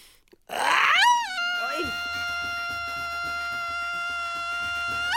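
A long Mexican grito: a loud voice swoops upward, then holds one steady, piercing high note for several seconds without a break, over a soft low rhythmic thumping.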